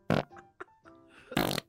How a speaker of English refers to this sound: I rip ass hard. This sounds like he's getting electrocuted. That was a 50 mile an hour fart. Big old fart, total egg stench, mayhem, dropping dirty eggs.